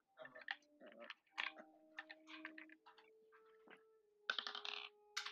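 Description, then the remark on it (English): Dice, including a ten-sided die, are rolled for a saving throw in a tabletop role-playing game, clattering across a hard tabletop in a quick series of sharp clicks and rattles, pausing briefly before a final burst of tumbling. No one speaks. “Oh, hang on, that's the wrong dice.”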